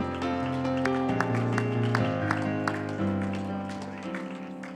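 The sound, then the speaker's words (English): A church audience gives the Lord a hand clap of praise before being seated for an evening service, sharp regular claps in a steady rhythm riding over loud, sustained keyboard or organ chords that shift pitch partway through. “Give the Lord a hand clap of praise before you're seated tonight.”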